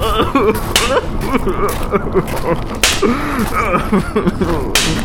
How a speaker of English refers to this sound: Then he took a whip and laid it on the shoulders and calves of my brother, who began to howl and bellow.